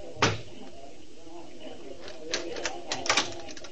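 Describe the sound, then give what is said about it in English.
Knocking three times on an apartment door: one sharp rap, then a quick cluster of lighter wooden knocks a couple of seconds later. “I knocked 3 times as prearranged.”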